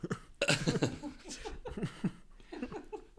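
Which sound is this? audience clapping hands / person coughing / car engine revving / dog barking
person coughing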